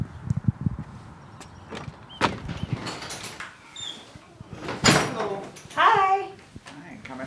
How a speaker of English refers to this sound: It has to be the front, 1800 South Prairie. There's a gigantic door here. Let's see if I can get inside.